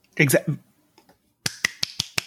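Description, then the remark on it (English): A quick run of five sharp hand claps in a steady, fast rhythm, crisp and fairly loud, following a short burst of someone talking. “I had to clap at the clap.”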